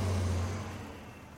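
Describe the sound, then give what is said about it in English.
An express bus roars past at speed, its deep engine rumble loud at first and then fading quickly as it moves away. No voices. “I looked back at him, and I watched as the express bus sped by us, continuing on its way uninterrupted.”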